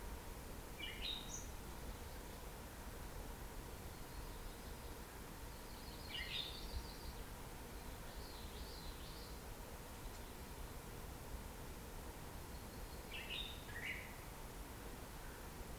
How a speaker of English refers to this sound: Also hear the hum of a million mosquitoes.